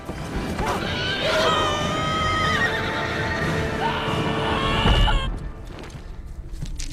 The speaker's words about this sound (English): your timestamp ended with the big, like, horse hoof hitting the ground, and I never really did like that shot, but...